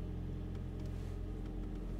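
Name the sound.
car interior driving noise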